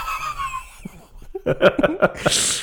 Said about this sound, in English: Again, you yawn in the microphone. It's no big deal.